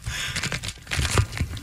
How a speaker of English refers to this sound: So, let's see if I can quietly pop some bubble wrap.